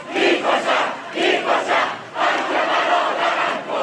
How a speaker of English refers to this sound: Scenes of sheer bravery as the crowd chant against the regime and support Qabadlu's mother